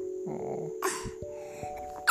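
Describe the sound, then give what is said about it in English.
A girl with a cold sneezes, a short breathy burst followed by a sharper second sneeze near the end, with a steady faint hum underneath and no talking. “Bless you.”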